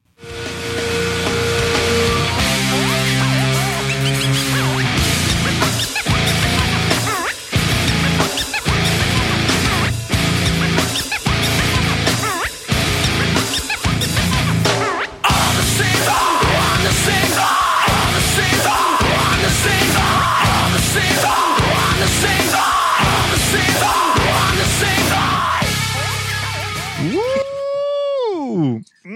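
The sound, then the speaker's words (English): A loud, dense nu metal song with pounding drum hits, heavily distorted guitars, a scratch solo and harsh screamed vocals, ending in a burst of bending, squealing guitar noise. “There's a crunch into scratch solo into a scream section with some guitar noise.”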